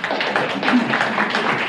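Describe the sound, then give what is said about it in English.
A crowd at a law enforcement press conference in Barron, Wisconsin applauds as the sheriff walks away, many hands clapping at once in a dense, even patter that holds at a constant loudness throughout, with faint voices mixed in underneath. “And this applause as the sheriff walks away is something I don't think I've ever seen before at a law enforcement press conference.”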